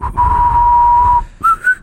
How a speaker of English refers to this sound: Why do you whistle?